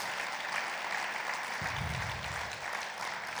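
A crowd applauds steadily, a dense wash of clapping that holds at an even level throughout, with a brief low rumble partway through.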